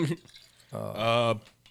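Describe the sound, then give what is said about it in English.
A quick swig of water from a vodka bottle: a short liquid gulp with a rising, hollow glugging tone, fairly clear, followed by quiet. “I need to drink more alcohol. Nah, that's just water. This is water in a vodka container.”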